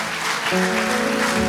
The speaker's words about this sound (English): And seeing, I think there was nearly 20 or more that had got baptized that night, and just seeing what God, yeah, you can clap, amen.